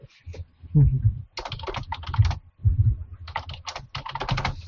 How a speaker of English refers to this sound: That was really loud typing. His microphone is on his webcam, so it picks up everything in the room.